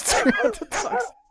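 A person imitates a pack of many little dogs yapping behind a house door in a rural area, with a few quick, high, voiced bursts run together over about a second before stopping abruptly. It is fairly loud.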